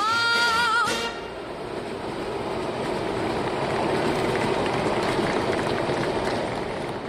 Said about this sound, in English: As the dancers danced and the music played to its second ending, joining the applause from the outdoor crowd was a Metrorail train running on its tracks above the makeshift stage.